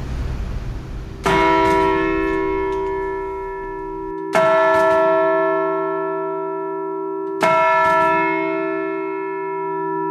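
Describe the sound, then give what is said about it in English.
The 2-ton modern cast Bow bell in London strikes three times, evenly spaced a few seconds apart, each stroke ringing out loud and rich with finely tuned harmonics and a deep hum that sustains and overlaps into the next. “Because they're a modern casting, got all the harmonics beautifully tuned in there, and the hum goes on and on and on.”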